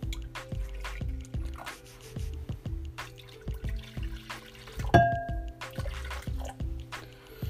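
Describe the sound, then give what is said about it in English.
Water pours into a matcha bowl in a steady, gurgling stream with rhythmic glugs and splashes, moderately loud, with a brief brighter clink partway through, as the rest of the water is added while making matcha. No one speaks. “And then you add the rest of the water in.”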